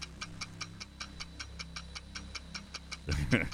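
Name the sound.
ticking countdown clock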